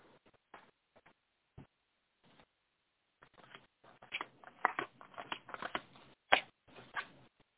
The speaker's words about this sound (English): So let's go ahead and see what the cards want to share. Shuffling just a little bit here. We'll lay out the cards.